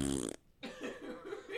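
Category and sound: vocal imitation, imitated fart sound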